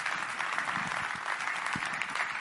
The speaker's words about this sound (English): Let's just clap for that for a second. It's pretty awesome.